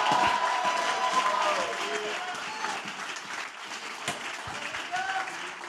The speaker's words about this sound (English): In Jesus' name, if you're one of them, let the Lord hear your great hand clap tonight.